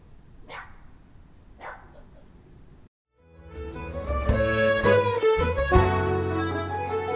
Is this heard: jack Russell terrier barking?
yes